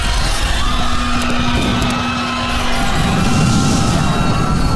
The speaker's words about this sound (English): The doors closed and the elevator started down. There was shrieking and screaming.